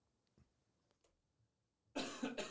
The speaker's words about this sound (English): I'm coughing. Sorry.